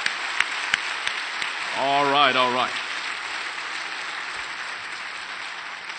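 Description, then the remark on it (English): An audience claps steadily for the K college group and the college students present, a dense, even patter of many hands, while a man's voice briefly speaks over the applause midway. “Let's give them a rounding applause.”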